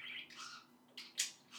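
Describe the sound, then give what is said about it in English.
A bird chirps and warbles in a quick run of high, bright notes, with a sharper chirp near the end; it sounds soft, with no one talking. “I'm not going to do math right now, because then there's going to be a whole lot of silence and you're just going to hear the bird babbling for about like 5 minutes.”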